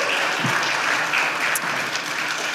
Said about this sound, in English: And the stage is yours, guys. Enjoy. Come on, big round of applause.